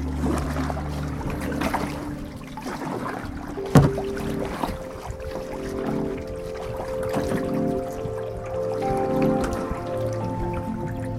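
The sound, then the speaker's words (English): Small waves lap and slosh against a dock, a steady soft watery rippling with occasional drips and one sharper knock, over a low rumbling hum. “Now we're here on the dock listening to the water ripple its little waves.”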